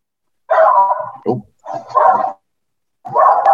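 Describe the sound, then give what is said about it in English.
A dog barks in three separate bursts, each a loud, drawn-out bark or yowl with a brief quiet pause between them, and no one speaking over it. “Obviously, the dog agrees.”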